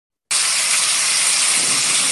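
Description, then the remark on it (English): Steady rain begins abruptly after a short silence, a dense, even hiss weighted toward the high end that holds at a constant, fairly loud level with no voices. “It sounds like rain. It is rain.”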